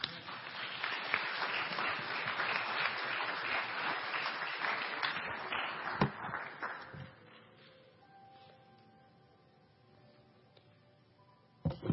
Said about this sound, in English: Let's give Him a clap offering.